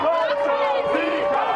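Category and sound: crowd, large crowd cheering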